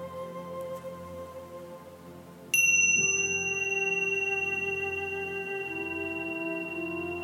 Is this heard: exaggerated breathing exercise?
no